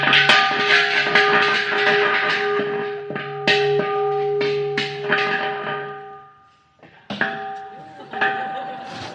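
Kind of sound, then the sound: signal or alarm, meditation bell ringing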